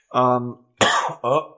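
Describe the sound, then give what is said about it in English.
A loud cough comes in three quick bursts: a harsh rasping hack, then a sharper explosive one, and a final shorter cough, with no talking. “Sorry about the cough again.”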